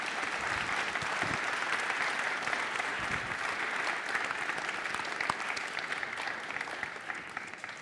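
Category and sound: crowd, round of applause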